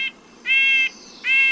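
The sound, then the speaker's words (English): A series of short, nasal, tinny 'yank' calls from a red-breasted nuthatch, a small bird, repeated at an even pace, clear, with no other sounds around them. “Here's the smaller red-breasted nuthatch's nasal yank, yank.”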